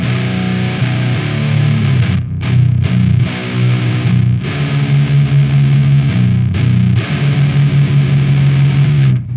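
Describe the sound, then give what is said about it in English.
A loud, heavily distorted electric guitar, its regular distortion given a small EQ boost to make it bigger, with a thick tone, plays chugging riffs and sustained chords, with brief gaps between phrases and no talking. “So, like, I this is my regular distortion, and then I add a little EQ boost to it to just make it a little bigger.”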